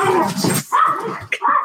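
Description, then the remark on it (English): Five dogs bark and yelp excitedly in a quick, overlapping burst, loud, with a few sharper high yips mixed in, as they run out the door. “And there's weird dogs barking and stuff.”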